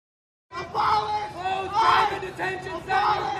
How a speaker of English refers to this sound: Okay, they're chanting. They're chanting. Abolish ICE. Close all the detention centers.